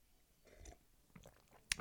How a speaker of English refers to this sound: I got coffee on standby at 7 p.m. in the evening, just a little sip to keep me going.